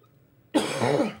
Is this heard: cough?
yes